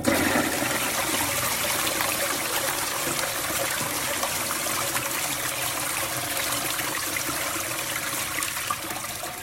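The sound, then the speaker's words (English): A toilet in a travel lodge flushes in one long, steady rush of water that keeps going for several seconds at an even loudness, with no voices, before tapering only slightly at the end. “I thought the flush of the toilet went on just a bit too long.”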